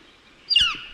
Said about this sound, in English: The northern flicker.